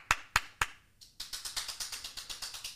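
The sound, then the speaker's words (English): Three sharp, separate claps, a brief pause, then a quick, steady run of hand claps, like a small round of applause from one or two people, celebrating a successful first week of Patreon. No voices. “Round of applause for a successful first week of Patreon.”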